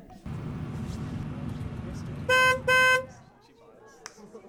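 A car engine idles as the car pulls up to a float, then a car horn gives two loud, sustained honks in quick succession before the engine noise fades.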